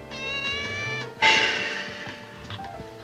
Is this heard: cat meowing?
yes